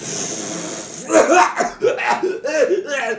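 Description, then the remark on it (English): A person imitates coughing with a quick series of short, throaty voiced bursts, fairly loud, following a second of steady background hiss. “You just start coughing.”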